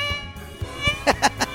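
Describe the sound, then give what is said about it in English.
A person imitates a cat, voicing three quick, bright meows in a row over a steady harmonic hum, moderately loud. “Cats on parade. Meow, meow, meow.”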